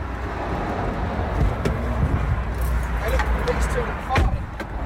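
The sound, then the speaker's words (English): A steady low engine and road rumble from inside a moving car pulling over onto the hard shoulder after a suspected burst tyre, with a few sharp clicks and knocks over the drone as the vehicle slows and shifts. “So now we're pulling over to the hard shoulder.”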